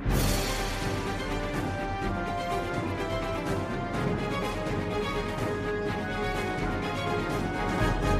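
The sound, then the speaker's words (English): A jingle introducing a world news segment plays for about eight seconds: dense, loud music with steady sustained tones and a busy pulsing rhythm, no voices, holding the same level until it ends. “Play the jingle.”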